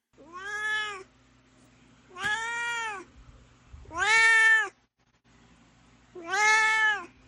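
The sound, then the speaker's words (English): A cat named Dorite meows four times in a steady, evenly spaced series, each call drawn out and fairly loud, with no talking around them and only a faint low hum in the background. “So let's hear again from my cat, Dorite.”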